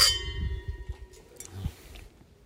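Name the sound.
wine glasses clinking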